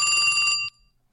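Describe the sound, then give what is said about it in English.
A telephone rings with a bright, steady electronic tone carrying several sharp high harmonics, sounding for about half a second before cutting off abruptly into near silence. “Okay, I seem to be getting a phone call.”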